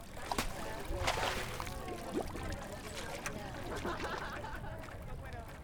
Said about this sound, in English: I've been riding my bike to work, taking the Lakeshore bike path that goes through the University of Wisconsin campus. On a couple of occasions, the women's rowing team has been getting boats out of the boathouse and onto the lake as I bike by.